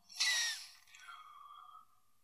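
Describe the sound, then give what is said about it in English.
A person yawns once: a breathy, airy opening that fades into a drawn-out, tonal groan lasting about two seconds, with no talking over it. “I just yawned there.”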